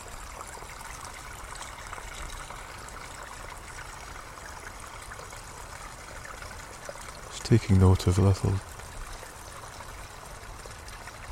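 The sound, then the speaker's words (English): A steady stream trickles and splashes continuously, moderately loud, with a brief burst of quiet speech partway through. “Just enjoy the sound of those crisp timbres of the water hitting itself.”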